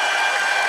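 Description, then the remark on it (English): A recorded applause sound effect: a burst of crowd applause, a dense, steady wash of many hands clapping at once, loud and hissy, with no voices over it. “Let me pull up an applause for you.”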